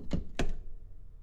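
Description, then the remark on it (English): A phone is set down onto a charging stand that also holds post-its, making two quick hard thunks about a quarter second apart, followed by quiet low background noise. “But then I bought this other thing, which is like, see, I'm gonna put my phone on it right now.”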